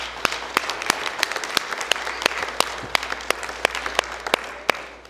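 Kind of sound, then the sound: crowd, audience hand clapping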